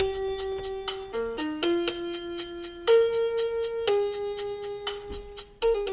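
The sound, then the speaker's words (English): A slow blues tune: a long, sustained lead melody glides between a few held notes over a steady tap of light percussion, with no voices. “Maybe it's been a tough day. A little blues.”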